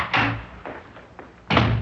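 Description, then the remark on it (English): A door bangs open with a solid thud, followed by a quieter shuffle and a second heavy knock of wood as someone comes in without knocking, no voices. “you came in here without knocking.”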